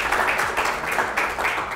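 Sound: audience applause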